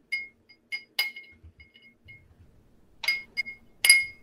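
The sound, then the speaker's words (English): Sugar being muddled in a cocktail glass: a series of irregular clinks and taps with a bright glassy ring, several louder strikes and soft low scraping thumps in between, with no talking. “If you didn't use simple syrup like me and you have just your glass, give it a smush.”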